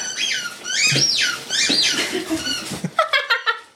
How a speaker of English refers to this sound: Whose dog is that?